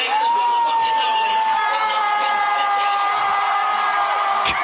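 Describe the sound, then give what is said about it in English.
A large comedy show crowd cheers wildly and continuously at high volume, a dense roar of voices with a long, sustained high whoop ringing over it throughout. “The crowd was going wild.”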